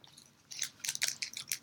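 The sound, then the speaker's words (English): Crisp crunching of someone chewing Sunrise crunchy chocolate with puffed rice krispies, milk plus cereals, a quick series of brittle bites and crackles with no talking. “Sunrise crunchy chocolate with puff rice krispies, milk plus cereals.”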